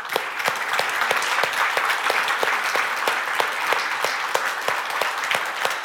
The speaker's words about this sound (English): So let's just look around and show our appreciation for these ladies with an applause.